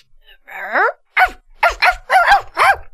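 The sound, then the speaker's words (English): A puppy in a car, woken by a butterfly, lets out a short whiny whimper, then fires off a rapid series of five or so high, sharp yaps, loud, with no one talking. “The little pup jumped out of the car and after the fleeing insect, and chased it through the garden.”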